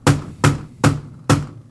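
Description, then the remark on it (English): Four loud, evenly spaced knocks on the sealed steel door of a mausoleum, each a sharp bang followed by a short, low resonant ring. No voices are heard. “Let's knock on it again and see what happens.”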